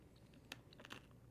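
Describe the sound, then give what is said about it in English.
Crisp crunching from crunchy candy being chewed, a few sharp irregular cracks over a quiet background, with no talking. “Crunchy candy.”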